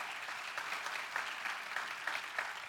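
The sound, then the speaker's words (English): A group claps steadily, a dense patter of many hands with small rhythmic swells, moderately loud and sustained throughout with no voices over it. “Well, let's, okay, you can clap again.”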